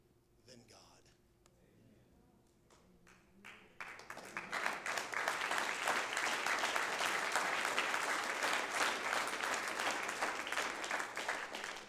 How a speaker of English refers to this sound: I appreciate the clap, and I do not diminish your response by any means.